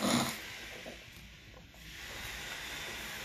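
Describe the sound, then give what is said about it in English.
A short, raspy throat-clearing burst as a person clears phlegm from their throat opens the moment, then trails into a steady, breathy hiss with no talking, fairly quiet. “And yes, I do have a lot of phlegm. We're just going to get it out the way now.”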